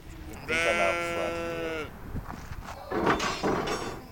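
A single long, wavering sheep bleat rings out, followed by quieter shuffling and rustling noises of animals moving around in the pens of a fleece sheep ranch in Moab.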